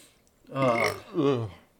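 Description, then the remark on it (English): A loud burp after drinking warm Budweiser beer, in two drawn-out pulses, the second slightly lower and rumbling, heard on its own without any talking. “Speaking of burps and warm Budweiser,”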